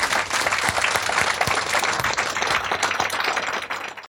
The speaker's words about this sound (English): Let's give one last round of applause to our author.